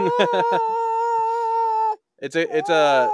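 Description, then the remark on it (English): The speaker's dog lets out a few short yelps that stretch into a long, steady howl, falls silent briefly, then resumes with a wavering, sliding howl, loud. “Oh, I'm sorry. That was my Sometimes I dog.”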